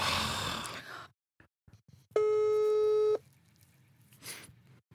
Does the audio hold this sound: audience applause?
no